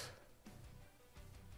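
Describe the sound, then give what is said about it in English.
A door being nudged open by a dog, heard as a few soft knocks and rattles spaced irregularly over a low background rumble, fairly quiet and with no one speaking. “That's my dog for opening the door.”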